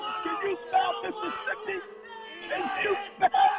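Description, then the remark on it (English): A crowd boos an audience member brought on stage, a Giants fan, in a dense wash of many overlapping voices holding drawn-out, low, moaning tones, with a few louder swells near the end. “They're booing you”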